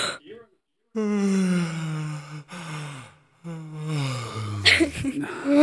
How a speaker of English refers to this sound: I didn't mean to. We both yawned.